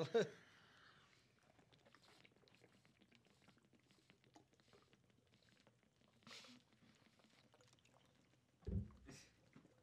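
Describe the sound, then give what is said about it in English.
Water pours and splashes, loudest at the start, then settles into a steady low trickle with a couple of sharper splashes near the end. “Ooh, splashy.”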